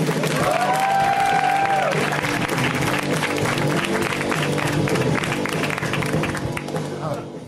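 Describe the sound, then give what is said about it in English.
An audience at a comedy show applauds and cheers for comedian Joe Zimmerman in a dense, steady roar of clapping, with a shrill whistle early on and whoops mixed in. The sound stays loud throughout before easing slightly at the end. “How are you guys feeling? Awesome. Beautiful. I love the energy. And keep it going, you guys, for Joe Zimmerman.”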